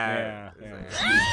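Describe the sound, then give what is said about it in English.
A person vocally imitates a Jurassic Park dinosaur scream, starting as a low, raspy drawn-out groan that dips, then rises into a strained, high-pitched screeching wail. “I used to always try to imitate that sound, too.”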